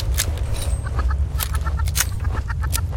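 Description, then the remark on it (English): Agitated clucking and squawking from an angry enemy chicken in a video game, sharp repeated bursts over a steady low rumble, fairly loud with no talking. “That chicken is an enemy. Like, it's angry.”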